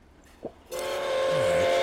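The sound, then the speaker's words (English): A train passes: after a brief soft thump, a broad rushing rumble starts abruptly and builds steadily louder, carrying a sustained mid-pitched tone, with no one speaking. “You aren't the right train.”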